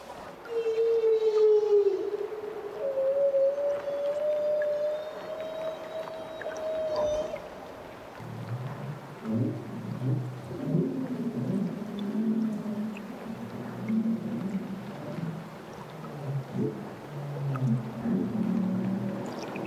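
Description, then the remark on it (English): A long, rising and gliding whale call sings out over a watery, rumbling backdrop, recorded with microphones above and below the water in Glacier Bay National Park, Alaska. Lower, grainy whale moans and grunts continue in the second half, with no speech. “set his microphones above and below the water and mixed it all together for his CD, …”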